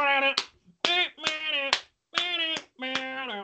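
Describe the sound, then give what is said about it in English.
Half a dozen sharp hand claps land at a loose, uneven rhythm, each one cutting through a sustained voice that hums or sings between them. “I like how I'm like clapping like one of those porns where they're like all the girls are clapping around like male dancers.”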